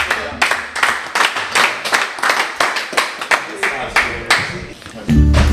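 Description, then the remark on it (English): Loud, steady clapping from an audience, sharp claps in a brisk, fairly even rhythm for about five seconds, then a low sustained tone comes in at the end. “So let's clap them out, folks.”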